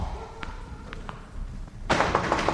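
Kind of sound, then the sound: impact, knocking on a door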